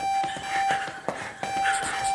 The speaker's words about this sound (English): Will it still be working? With the alarms going off? It depends on the level of the alert.